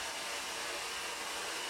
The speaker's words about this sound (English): He could hear the blow dryer and knew I wouldn't hear his knock. Well, I stopped the dryer and waited.